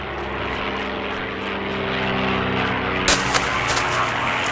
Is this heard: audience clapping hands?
no